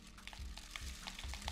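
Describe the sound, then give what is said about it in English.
Dry rice pours into a container whose bottom is covered with paper secured by tape, with a steady, grainy hiss and patter, broken by small clustered bursts of rattling. The sound is fairly quiet and there is no talking. “All right, now that I've got this on, I'm gonna take my rice and pour it in.”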